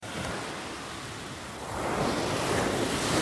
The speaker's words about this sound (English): Well, apologies for the sea noises, but this is the analyst with a difference, because I'm in Greece, so this is, I suppose you could call the analyst inside Crete. Anyway, I'll fade out the sea noises